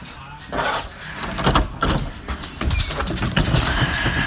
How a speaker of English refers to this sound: I'm walking to my exercise room, and I have a reason to go there to show you what I hope will be a little demonstration. So I'm going to open the exercise room door.